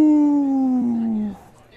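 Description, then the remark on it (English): A person imitates a wolf howl during a football game broadcast: one sustained, fairly loud voiced wail that slides slowly downward in pitch for over a second, then breaks off abruptly into quiet. “Give me your best wolf howl”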